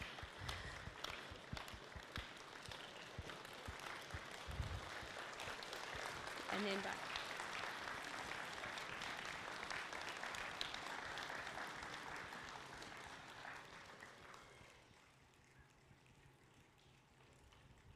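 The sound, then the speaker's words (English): A crowd claps their hands and stomps their feet on a concrete floor in a dense, sustained patter that swells and then fades, imitating rainfall, with a voice speaking briefly over it. “And then we're going to start stomping our feet.”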